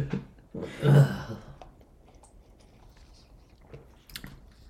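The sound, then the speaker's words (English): A noisy slurp of pumpkin hard seltzer being sipped, lasting about half a second, followed by quiet swallowing and small mouth sounds, with no one talking. “Maybe we'll do 2 sips this time and we'll like it a little bit more.”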